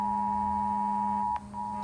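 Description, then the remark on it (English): A phone receiving a text from the BC Emergency Alert System, for residents of the Vancouver Lower Mainland, blares a steady, continuous electronic emergency alert tone for the whole moment, loud and unbroken, with a couple of faint clicks near the end. “I know I muted my phone. Wait now, it's a text from the BC Emergency Alert System.”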